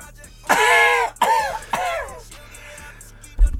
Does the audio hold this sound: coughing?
yes